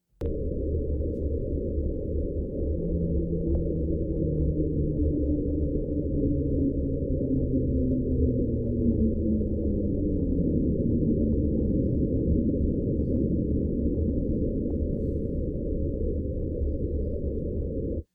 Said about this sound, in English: This noise shares some similar origins as the last one, with some thinking an iceberg is being ground along the bottom of the ocean. But this one is called the slowdown noise, as it sounds as if an iceberg is grinding to a halt.